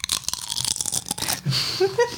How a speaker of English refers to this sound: The dill pickle chips made your life update. I am stoked. They're right here next to me, actually. You're not going to eat them, though, because they're loud, because they're chips.